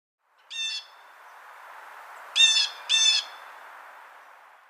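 Blue jay warning calls: three harsh, raspy cries, one alone and then a quick pair, ringing out clearly over a soft, steady outdoor hiss with no one speaking.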